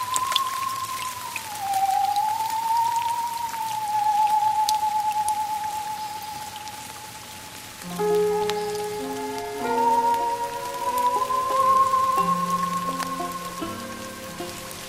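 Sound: rain falling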